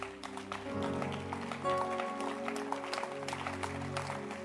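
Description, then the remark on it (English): An audience claps in a steady, continuous rhythm, dense and fairly loud, over sustained held notes from a keyboard or organ. “Oh, keep clapping.”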